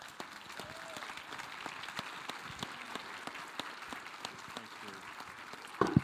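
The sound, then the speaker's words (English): An audience at a church stands and applauds steadily to honor two people, a dense wash of many hands clapping with a few sharper individual claps standing out, continuing evenly throughout before a brief louder burst near the end. “And so let's just stand and give these guys an applause, because we want to honor them well.”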